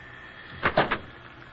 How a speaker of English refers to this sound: I looked up the nearest real estate office and then leaned my elbow on the bell.